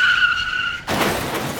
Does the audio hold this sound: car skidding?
yes